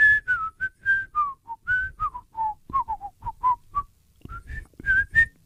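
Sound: person whistling a tune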